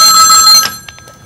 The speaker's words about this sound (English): It's our first call. Should I pick it up? Yeah, pick it up.